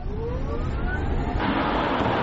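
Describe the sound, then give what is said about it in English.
An electric car accelerates, its thin motor whine climbing steadily in pitch over a loud, constant rush of road and wind noise, with no voices. “Let's see the acceleration, right?”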